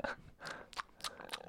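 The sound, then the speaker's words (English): Crunchy chewing of nuts, with four or five sharp bites in a steady rhythm and no talking. “I get some more women and some more of those colon nuts. Give me. I like to chew on them.”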